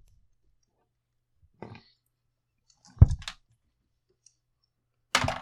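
Dice clatter across a hard tabletop in three short rattling bursts spaced a second or two apart, fairly crisp against otherwise quiet surroundings, with no one talking, as players roll charisma checks in a tabletop game.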